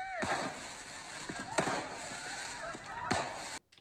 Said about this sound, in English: Light and back up. And when it comes to fireworks, keep an eye on your kids.